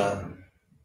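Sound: sneeze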